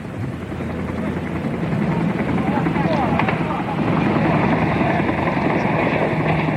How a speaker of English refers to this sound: These pictures taken as daylight came. And those particular helicopters appear to be troop-carrying helicopters. In the vicinity, this is the eastern side of the city, on the vicinity of the Marriott Hotel.